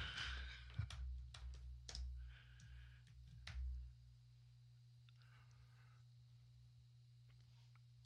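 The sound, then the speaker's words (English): Sparse, irregular clacks of typing on a computer keyboard, a handful of sharp key taps over a steady low hum, fading to quieter, scattered taps in the second half. “You can hear me typing, can't you?”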